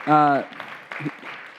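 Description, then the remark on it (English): A brief burst of audience applause given as praise to God, a soft, steady patter of clapping that follows a loud sustained vocal cheer, with some murmured voices mixed in. “So let's give God a clap for that.”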